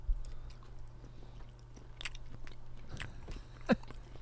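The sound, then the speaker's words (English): Someone bites and chews a pickled egg from a big jug, packed in vinegar brine in Milwaukee, Wisconsin: a few soft, moist crunches and clicks spaced irregularly over a low steady hum, with one sharper bite near the end and no talking. “going to stick with us and eat a pickled egg”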